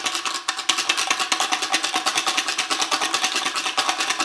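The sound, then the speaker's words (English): A few paper clips rattle inside an 8-ounce plastic drinking water bottle with its top cap screwed on, shaken fast and steadily, making a dense, bright stream of clicking bursts for about four seconds with no talking. “Okay, so next I have a plastic drinking water bottle, an 8-ounce bottle, and I put a few paper clips inside and just screwed on the top cap.”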